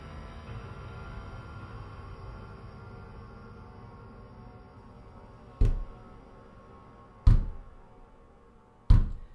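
Three heavy, booming, hammering knocks with a fist on a door, spaced a second or two apart, land loud after several seconds of quiet low hum. No one speaks.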